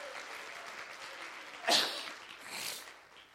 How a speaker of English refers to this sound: Everybody in the house, would you mind clapping to Him?